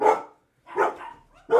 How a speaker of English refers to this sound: you've got my dog barking, bro. My wife just got home, so it's going crazy.